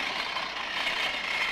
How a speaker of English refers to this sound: Another tractor.